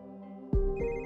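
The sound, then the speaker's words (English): A woman's phone rings with a call from her mother, the ringtone chiming in with a bright, melodic electronic tone, rising into two clear pulses over a steady sustained hum, loud with no voices. “But before Alexis closed her eyes, her phone rang.”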